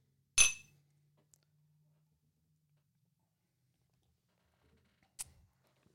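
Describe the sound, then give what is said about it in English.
Glasses of whiskey clink together in a toast, one bright ringing chime that fades quickly, followed by near silence and a second, lighter glassy tap a few seconds later. “Cheers. Cheers.”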